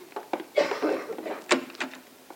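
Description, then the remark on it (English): A door opens: a brief rattle and scrape of the handle, then a sharp latch click, with no voices. “I'll show you to the door”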